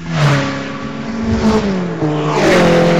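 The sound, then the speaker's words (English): A Rover 216 race car fitted with a standard scrapyard engine roars past during a race, revving hard with rising and falling pitch, loud and continuous for the whole stretch with no voices. “Here he comes now.”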